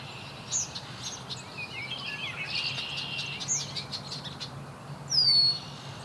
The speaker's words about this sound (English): Red-winged blackbird.